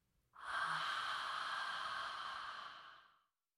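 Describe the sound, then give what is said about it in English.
A long, steady breathy exhale lasting about three seconds, fairly loud, released after a held breath during a singing breathing exercise, starting abruptly and slowly fading out at the end. No talking. “And exhaling.”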